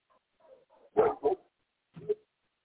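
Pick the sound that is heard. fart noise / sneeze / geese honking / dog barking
dog barking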